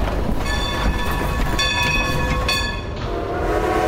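A train, the Polar Express, rumbles loudly while its whistle sounds three bright, sustained blasts in quick succession, the last one cut shorter, with steady mechanical noise continuing underneath.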